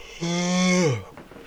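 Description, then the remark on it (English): A single loud burp, drawn out for nearly a second with a steady, droning tone whose pitch sags downward at the end; no one speaks. “People are not going to like this episode, because it's just me, coughing, yelling, and yawning. Excuse me, and what burping.”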